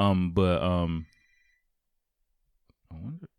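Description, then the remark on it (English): A phone ringtone sounds: two loud, sustained tonal bursts that fade out, then a stretch of silence followed by a brief voice-like sound. “Oh, sorry, phone.”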